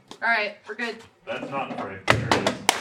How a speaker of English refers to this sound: That was another skull that just broke off camera. We knocked it over.